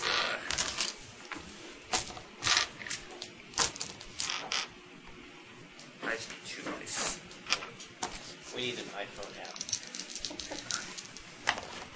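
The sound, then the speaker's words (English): Dice clatter and tumble across a hard tabletop in a quick, irregular burst of sharp clicks and knocks, with faint murmuring voices in the background. “How many dice do you need? How many dice do I need?”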